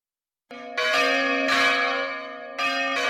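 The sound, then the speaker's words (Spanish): Church bells chime loudly on New Year's Eve, with several overlapping strikes roughly a second apart and a rich, sustained ring between them. No voices. “Cagadas en las campanadas.”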